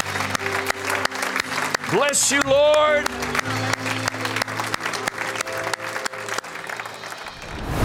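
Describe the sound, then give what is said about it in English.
An audience claps their hands in praise, declaring Jesus is Lord, in sustained, loud applause for several seconds, a dense crackle of many hands, while a voice briefly calls out over the clapping. “If you believe Jesus is Lord, would you give Him a hand clap of praise and declare it?”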